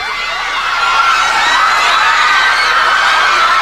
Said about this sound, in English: And then … butts in with a voiceover, and there's this horrible loop of girls screaming under him before we cut to Cactus making his entrance. And seriously, it's like Beatlemania while, like, … is talking.